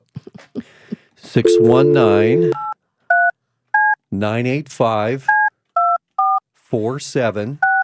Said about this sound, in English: So dial it up for me here. It's 619.